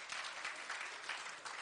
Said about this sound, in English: Come on and give God a hand clap of praise.